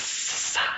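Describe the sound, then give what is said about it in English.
A voice imitates a cobra's hiss: one sustained, breathy, sharp hiss lasting under a second, fairly loud, rising slightly in intensity near the end. “That is like the most pro cobra snake I ever heard.”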